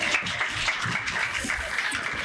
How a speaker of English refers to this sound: Big clap.